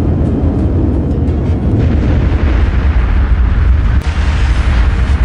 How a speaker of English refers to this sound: The US government wanted to test what would happen if a plane crashed into the concrete walls of a nuclear power station. The jet sets off, bolted to a track to prevent takeoff. It's doing 500 miles an hour.